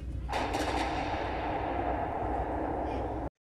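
Loud, continuous cannon fire, a dense roaring barrage with no clear gaps between blasts, heavy for about three seconds before it cuts off abruptly into silence.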